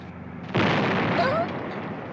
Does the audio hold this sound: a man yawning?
no